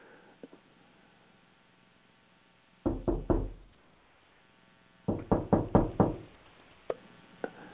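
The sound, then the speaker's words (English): Two bursts of firm knocking, first three quick raps and then a longer run of about five, loud, with quiet pauses between and a couple of faint taps afterward. “Who's knocking?”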